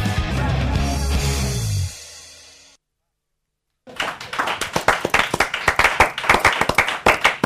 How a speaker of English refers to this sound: I like it. There's a bit of applause.